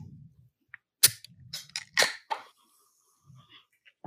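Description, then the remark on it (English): A beer can is cracked open with a sharp metallic pop and a burst of fizzing hiss, then a second crisp snap and more fizz, with faint low rumbling at the start. “I'd like to open mine so I can start drinking.”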